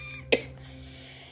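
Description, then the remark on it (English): A single short, sharp cough standing out against a quiet background with a low steady hum and no talking. “Pardon me for coughing.”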